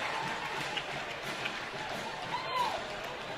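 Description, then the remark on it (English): A large football crowd at Thunderbird Stadium cheers a first down in a steady, sustained roar of many voices, a dense wash of noise that holds at an even level for a few seconds without dying down. “The crowd cheers again for the first down.”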